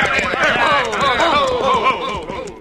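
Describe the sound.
Horse hooves clip-clop steadily beneath overlapping voices, the hoofbeats partly buried under the busy talk, with a fairly constant loudness throughout.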